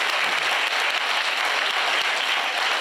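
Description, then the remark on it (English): A crowd claps and applauds steadily for coming out on a cold, freezing night, a dense, continuous wash of many hands with no pauses, loud and even throughout, with no voices standing out. “Give yourselves a massive round of applause for coming out on this cold, freezing night.”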